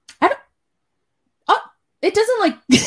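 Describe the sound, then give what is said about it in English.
A few short, throaty burps right up close to the microphone, loud and separated by brief pauses, the longest one drawn out and wavering. “Do I have like a burping problem?”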